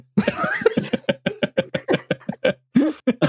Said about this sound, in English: I'm trying so hard not to have like a coughing fit. I'm trying to keep it down.